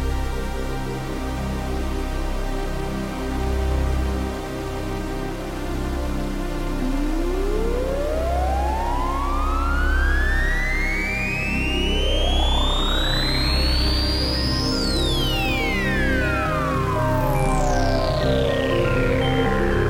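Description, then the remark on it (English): A Polybrute analog synthesizer, played back from a video, sounds a dense, buzzing sustained tone while bright pitch sweeps glide upward in layered arcs, peak, then swoop back down. It stays steady and loud throughout, with no voices. “Let's play it back here. Here we go. Here's some Polybrute, baby.”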